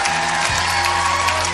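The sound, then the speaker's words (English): An audience claps steadily as an offering to God, a dense, sustained burst of applause, with scattered cheers mixed in and a low organ-like tone humming underneath. “Give God one more great clap offering.”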